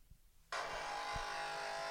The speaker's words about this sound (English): Is that what the coffee machine sounds like?